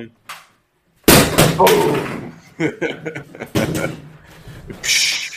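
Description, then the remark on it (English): Someone imitates fireworks with their mouth, producing a string of loud, breathy booms and bursts in rapid succession after a brief quiet start. “Okay, so you got to provide the booms.”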